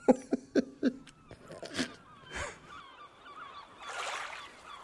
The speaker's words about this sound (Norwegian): Ok, få på litt måkeskrik og terneskvulp her.